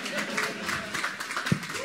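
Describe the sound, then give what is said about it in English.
A church ministry audience applauds the announcement of its new lead pastors, in a steady, dense patter of many hands clapping together, with a faint murmur of voices mixed in underneath. “I wasn't expecting a clap, but that's amazing.”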